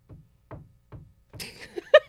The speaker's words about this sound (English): So someone is like, I thought I was bugging, knocking on the walls. Either we got like a really diesel ass squirrel in the walls, or someone's trying to chisel their way into the studio right now, and it's throwing all of us off.